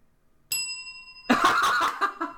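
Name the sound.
bell ringing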